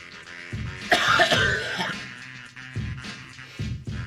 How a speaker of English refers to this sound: I literally have to clear my throat during ….